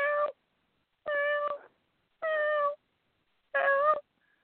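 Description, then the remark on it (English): A cat meows four times in a steady, evenly spaced series, each call loud and drawn out, with brief silences between them and no voices. “That cat has no... I mean, it literally has no shame, that cat, you know?”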